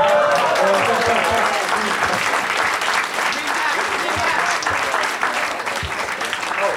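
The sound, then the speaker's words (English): An audience claps steadily for both sides, the winners and the losers, a dense, sustained wash of applause that stays loud for the whole stretch and tapers only slightly toward the end, with no voices standing out. “I hear your applause for both sides, the winners and the losers.”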